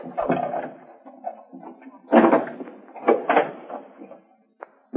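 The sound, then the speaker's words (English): A key rattles and turns in the lock of a hotel room door with a few metallic clicks and scrapes, then the door creaks and swings open, ending with a sharp latch click. “Use the key he gave us.”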